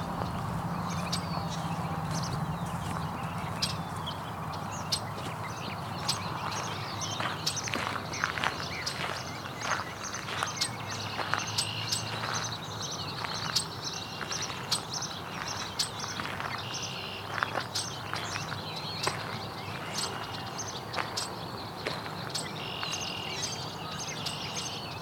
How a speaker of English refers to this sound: Baltimore Oriole still singing quite a bit.